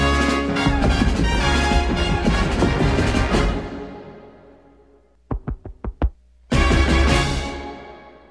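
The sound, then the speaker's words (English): Music fades out, then a short run of five heartbeat-like thumps pulses in a quick tune-like rhythm before the full music swells back in. No one speaks. “And it ends with the classic heart beating to the Simpsons theme song.”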